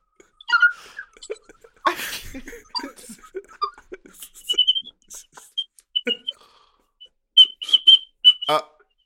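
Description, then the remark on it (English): A woman whistles through her teeth in short, breathy, high-pitched bursts, with a sharp airy rush early on and a quick run of close whistled notes near the end. “Oh, she's whistling through her teeth.”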